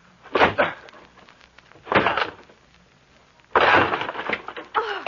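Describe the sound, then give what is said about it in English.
A door is broken down: loud, heavy blows land about every second and a half, and the final longer crash is followed by cracking and splintering wood. No one speaks. “I'm going to break down the door.”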